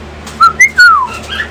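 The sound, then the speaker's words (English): Lovebirds whistle three quick, clear notes, the last one longer and sliding downward, followed by softer scratchy chirps with no talking. “That we have a little lovebirds here.”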